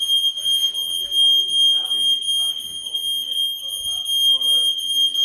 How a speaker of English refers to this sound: The alarm keeps going off.